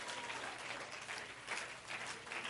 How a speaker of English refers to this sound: Oh, somebody clap your hands to the Lord right now.